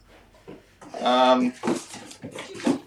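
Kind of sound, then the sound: animal, puppy whimpering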